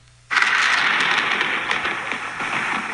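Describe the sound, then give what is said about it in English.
A steady rush of rain-like hiss starts abruptly after a brief quiet moment and keeps going, fairly loud and even, with faint crackles scattered through it and no voices. “Do you hear that? Oh, God, what's that? It's like rain or thunder.”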